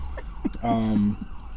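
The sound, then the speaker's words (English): A brief, steady siren wail from an emergency vehicle rises out of background noise for about half a second, with faint voices. “The sirens in the background and shit.”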